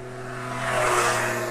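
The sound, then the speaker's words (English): A small, buzzy motorbike, like a very tiny scrambler bike crossed with a moped, comes up from behind and passes on the Ricken Pass, its steady droning whine swelling to a peak midway before easing off slightly; no voices are heard. “Oh, it's like a very tiny scrambler bike crossed with a moped.”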